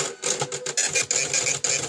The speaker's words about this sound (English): I was at CVS earlier, and I had a couple of minutes of downtime because I was waiting for my receipt to print.